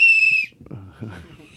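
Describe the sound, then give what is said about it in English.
A single loud, shrill whistle blast rings out for under half a second, sharp and steady in pitch, then cuts off as a voice begins talking. “Our show's better with whistles, and everybody knows it, and they're jealous.”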